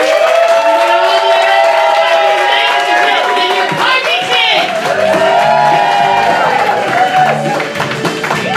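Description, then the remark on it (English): A loud crowd cheers and whoops steadily for several seconds, with high excited shouts and clapping blending into a continuous wash of noise. “So I think it's important we hear, ladies and gentlemen, big round of applause for everyone.”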